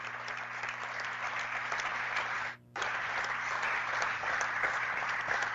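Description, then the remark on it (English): A gym crowd, wearing Team Slick T-shirts, and the officials at an Amherst versus Ravenna basketball game applaud steadily, a dense, hissy wash of clapping that holds at full strength throughout, broken only by a split-second dropout midway before resuming just as loud. “Even our officials applauding.”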